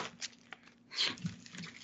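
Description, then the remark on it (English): Scratchy crinkling of wrapping paper rubbing right against a microphone as a package holding the short story collection Concrete is unwrapped, with a louder rustling burst midway and softer brushing noises before and after, no voices. “The paper's rubbing up against the microphone.”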